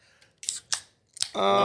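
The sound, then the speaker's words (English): A can of Better Beer being cracked open: three sharp, crisp clicks and snaps in quick succession, followed by a loud, sustained tonal sound that could be a drawn-out voice. “Cracking a better beer and ripping into one of these.”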